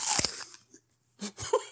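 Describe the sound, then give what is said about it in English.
A loud crunch as teeth bite into a crisp apple, followed after a brief pause by a couple of wetter chewing crunches. No talking. “That was probably like a commercial level crunch there.”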